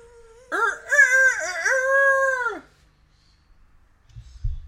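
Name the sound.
rooster crowing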